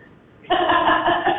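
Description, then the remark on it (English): A toilet flushes in a bathroom with a sudden rush of water that begins abruptly and keeps churning steadily, a loud, slightly muffled whoosh with no talking over it. “Go ahead and flush the toilet”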